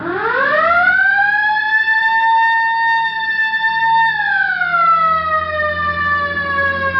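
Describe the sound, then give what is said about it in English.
A loud police car siren wails, its pitch sweeping up, holding high, then gliding back down in one long continuous cycle, with a low engine rumble underneath and no voices. “All right, hit the siren.”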